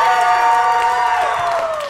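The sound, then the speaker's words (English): A crowd cheers loudly and steadily, with shrill whoops and yells riding over a dense wash of clapping that holds strong for the whole couple of seconds, giving a round of applause for the team Corruption after a match at the Movie Trivia Showdown. “Can I get one more round of applause for Corruption, guys?”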